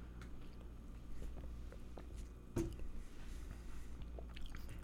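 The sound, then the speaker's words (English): Sipping and swallowing of a Bud Light Lime beer, with soft wet mouth sounds and one sharper gulp midway, over a low steady background hum. No one speaks. “And let's give it a sip.”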